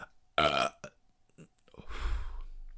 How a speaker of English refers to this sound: That was a good burp, and you're recording me, so that's why I did it.